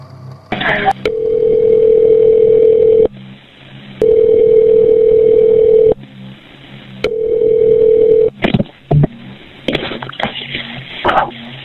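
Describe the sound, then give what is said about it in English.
A telephone ringback tone sounds in three long, steady electronic rings with pauses between as 911 calls back a man's phone after he hung up. The line then clicks and rustles as the call is picked up, with faint muffled noise afterward. “let's listen to the last call that was made from 911 back to …'s phone”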